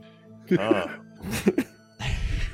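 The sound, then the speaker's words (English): A raspy coughing fit: three rough, throaty bursts in quick succession, the last one longer and breathier, with no talking around them. “He's had these coughing fits before.”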